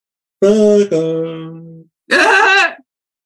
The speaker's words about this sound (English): You don't yawn when Uncle Kevin is talking, but you yawn when I'm talking.